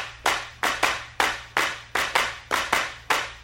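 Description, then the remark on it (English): Crisp hand claps from the clapping part of a jazz fusion track repeat in an uneven 22/8 time-signature pattern, some beats bunched close together and others spaced apart, over a faint low sustained tone. About ten sharp claps, fairly loud, with no voices. “that had these crazy time signatures, and there's a clapping part in this.”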